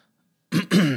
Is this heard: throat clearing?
yes